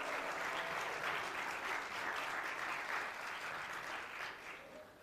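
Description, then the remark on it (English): An audience on a campus applauds to welcome Monroe scholars. Many hands clap in a dense, steady wash at a constant level for several seconds before easing slightly at the end. “Would you applaud them?”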